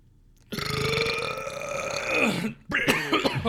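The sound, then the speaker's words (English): A long, loud, drawn-out burp rumbles for about two seconds, ending in a strained catch, then a shorter second burp follows right after, with no talking. “Yeah, I got a burp.”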